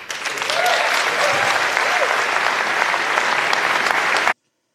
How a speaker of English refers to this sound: All right. As you can tell from the applause, that was at a Democratic town hall meeting.